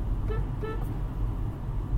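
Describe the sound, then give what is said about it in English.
Two quick, thin toots from a Kia Rio car horn, honked while driving through a tunnel, close together and fairly weak, over a steady low rumble of engine and road noise. “No one's gonna get out of the way of that Kia Rio horn.”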